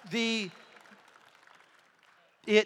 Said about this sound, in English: I wish the speaker would speak less to where we can hear worship more. It's okay to clap for that.